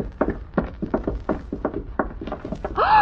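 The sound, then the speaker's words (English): A quick run of hollow footstep-like thumps, then a sudden creaking squeal at the very end as an unlocked door swings open. “Try the door. Oh, thank goodness it's unlocked.”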